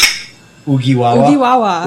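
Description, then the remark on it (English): A bright, sharp clink of glasses in a cheers toast rings out at the start and fades quickly, followed by a person speaking in an animated, sing-song voice. “So before we get the view started here, let's do a cheers.”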